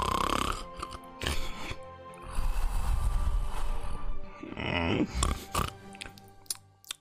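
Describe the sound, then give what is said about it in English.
A voice does exaggerated snoring, long rumbling snorts on the inhale with breathy wheezes between them, several loud cycles in a rough, uneven rhythm with no words spoken, imitating a guard deeply asleep on a chair with a spear, rocking back and forth. “And on that chair, you see a guard sort of asleep, but very deep asleep, with a spear, kind of like rocking back and forth and just snoring.”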